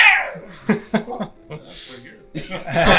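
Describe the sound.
A person imitates the pained yowl of a cat being shot by an arrow with a few short, strained vocal cries, fairly loud, followed by bursts of laughter.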